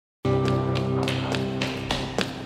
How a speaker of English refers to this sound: It's really like slapping the feet down. Well, you know what I love about those running footsteps is it's just, you can picture the room, the hallway that they're in like immediately. Absolutely. And they're getting closer.